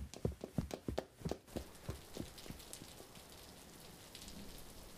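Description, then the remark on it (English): Steady storm rain hisses throughout, with a quick run of sharp, rhythmic tapping knocks over the first couple of seconds before the downpour settles into an even wash. No one speaks. “I didn't realize it was storming.”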